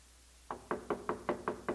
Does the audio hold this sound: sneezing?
no